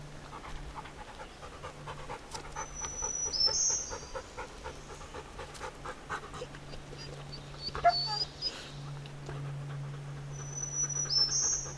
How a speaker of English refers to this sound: I'm just gonna pause and see if you can hear that bird.